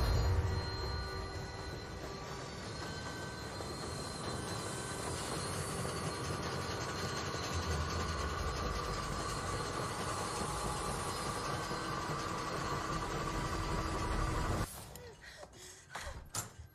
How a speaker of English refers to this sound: It was the sound of a train passing through my room.